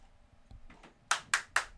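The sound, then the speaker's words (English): A few audience members clap on request: two soft, scattered claps, then three sharp, loud ones in a quick, even rhythm. Nobody speaks. “Audience, can you please clap your hands?”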